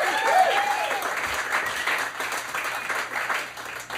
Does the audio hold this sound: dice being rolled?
no